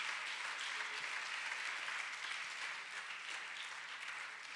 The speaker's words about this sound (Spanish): Denle un fuerte aplauso al Señor, hermanos y hermanas.